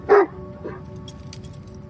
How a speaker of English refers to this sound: A little barking is good.